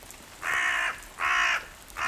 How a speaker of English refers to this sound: Do you think I'm going to die here, Mr. Crow? You're going to pick my bones, eat my eyeballs?